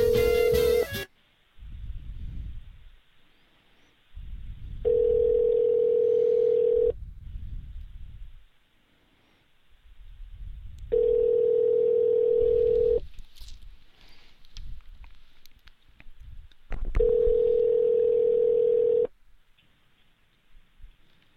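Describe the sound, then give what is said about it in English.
A telephone ringback tone on a call to a restaurant repeats three times, each steady two-second tone separated by several seconds of silence, heard clearly over a phone line with no one picking up. “They're not good at answering the phone here.”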